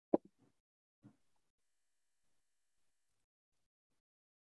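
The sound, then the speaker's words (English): Dice rolled for an animal handling roll, coming up 23, clatter onto a surface with one sharp, loud knock followed by a few quicker, softer ticks, then a final small clack a moment later before silence. “Dice.”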